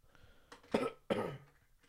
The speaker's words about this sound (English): The last minute of the podcast is just going to be me coughing